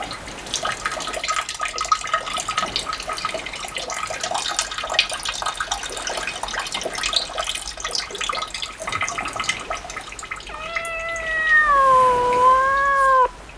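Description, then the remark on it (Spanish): A kitten's urine pours steadily into a bottle for about ten seconds, a gurgling, splashing stream, then the kitten lets out one long, wavering meow. No one speaks. “El gatito acumula orina en una botella y agrega que es para perpetrar un ajuste de cuentas con un escritor que tartamudea.”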